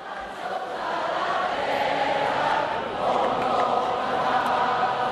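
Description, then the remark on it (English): A large crowd during the referendum campaign in Catalonia sings the national anthem together, a steady, dense wash of many voices holding sustained notes at an even, fairly loud level throughout. “And here are some crowds during the campaign in Catalonia singing the national anthem.”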